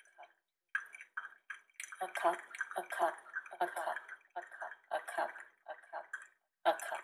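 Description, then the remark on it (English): Quiet drips of coffee fall into a cup in an uneven, rapid patter, each small splash running into the next for several seconds with a brief pause near the end. “Coffee dripping into a cup.”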